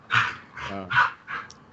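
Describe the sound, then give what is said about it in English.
A dog barks and whimpers in quick succession, four or five sharp, high yelps mixed with a whiny tone, moderately loud, with no talking. “That dog is having a time.”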